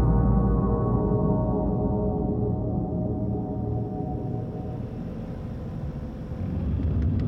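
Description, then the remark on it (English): A car engine rumbles steadily while driving in foggy, low-visibility weather, a deep continuous drone with a faint rising hum toward the end and no voices. “I got into the car with a kitchen knife slid into my belt and started driving towards Grandma's house.”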